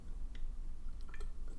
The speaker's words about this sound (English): Sorry, guys, I was drinking water. You guys know that I love to drink my water while I'm speaking, which is that weird?